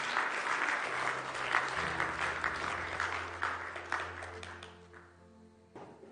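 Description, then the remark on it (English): An audience at a church sermon claps together in a dense, steady burst of applause to affirm that Jesus is good news. The applause slowly thins and fades, with a low sustained organ-like tone underneath. “And if you've experienced that good news of Jesus this morning, will you just give me a little hand clap and say, yes, Jesus is the good news for everyone.”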